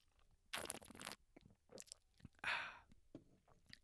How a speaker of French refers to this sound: Je bois une petite gorgée de mon rosé.